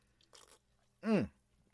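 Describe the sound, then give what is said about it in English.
A quick, soft slurping sip of a Waterloo drink, followed a moment later by a louder, brief voiced sound that falls in pitch, like a satisfied exhale after drinking. “Let me take a sip of my Waterloo.”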